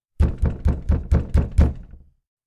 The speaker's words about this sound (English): A knock on the door startled Nadia awake.